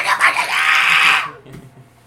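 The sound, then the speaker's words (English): A person lets out a loud, strained scream for about a second, imitating the shrieking mom from the TV show Malcolm in the Middle, then it cuts off abruptly into near quiet. “All I can I close my eyes and all I see is the mom screaming her freaking head off about something, you know, in silence.”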